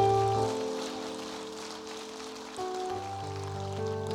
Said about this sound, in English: Can we give him just a round of applause? And our staff, too.